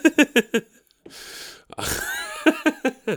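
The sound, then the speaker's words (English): Loud sneeze: a few quick catching gasps and a long sharp inhale build up to one explosive burst, followed by several short voiced breaths. No talking. “Oh, I'm going to sneeze.”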